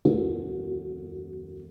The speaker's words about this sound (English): That's the gong.